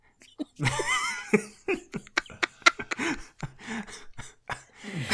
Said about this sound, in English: Sorry, I still have my cough, just FYI.